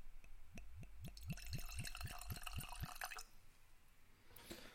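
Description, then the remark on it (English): A dram of Old Pulteney 12-year-old whisky glugs from a bottle into a glass in a quick series of about ten rhythmic gulps over three seconds, clear, then stops, leaving a quiet room tone. “I poured myself a dram of Old Pulteney 12-year, and it's nice.”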